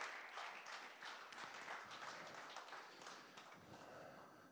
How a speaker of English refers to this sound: So if you you know who you are, if you're being welcomed into membership, won't you come quickly and we come up and join me on the stage. Let's give them a round of applause as they come.